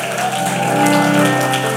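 A church audience clapping for Jesus, a dense, steady patter of many hands that runs loudly throughout, with sustained musical tones humming underneath.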